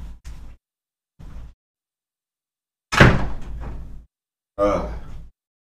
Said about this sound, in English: Monica let the door open. Give me 1 second, I'm gonna close it.